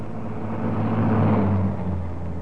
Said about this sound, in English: As the car stopped, the first post office van was already approaching.